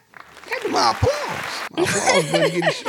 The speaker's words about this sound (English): My applause button running short.